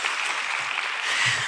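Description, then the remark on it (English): A crowd applauds steadily, a dense wash of many hands clapping at once, sustained and fairly loud throughout, with no individual claps standing out. “Can you give him a clap?”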